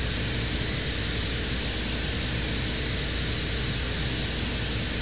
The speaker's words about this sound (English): So that's the drilling operation off the rover.